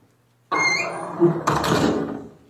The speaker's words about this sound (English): Quiet, till I shut the door of the shop.